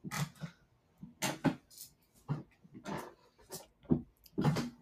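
A chair creaks over and over, roughly eight short, strained groans in an irregular rhythm, fairly loud, with no one talking.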